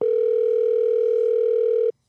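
The ringing tone of an outgoing phone call being dialed sounds once as a steady, mid-pitched electronic hum lasting about two seconds, then cuts off abruptly into silence. No one speaks.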